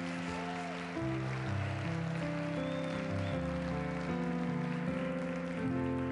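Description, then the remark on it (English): An audience gives a hand clap of praise to Jesus, clapping steadily in a dense, continuous wash of hand claps, while sustained keyboard chords shift underneath throughout. “Would you give him a big hand clap of praise right now?”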